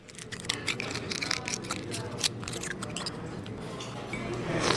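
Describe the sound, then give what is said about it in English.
Rapid wet clicks, scrapes and squishy crunches, irregular, as waiters shuck oysters and the lunch crowd slurps them down at an oyster restaurant on the San Francisco Wharf, over a steady hum of a busy restaurant. “The lunch crowd at Hog Island Oyster Company on the famous San Francisco Wharf slurps down oysters just as fast as the waiters can shuck them.”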